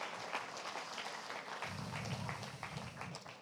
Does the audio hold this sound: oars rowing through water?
no